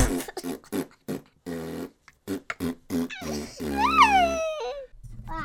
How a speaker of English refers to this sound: The next segment is called the Fart Giggles.